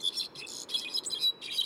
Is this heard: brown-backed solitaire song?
yes